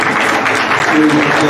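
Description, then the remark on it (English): An audience claps steadily in praise of the Lord, a dense, loud wash of applause with no break in the clapping and no voices standing out above it. “Can we one more time give the Lord a big clap of praise?”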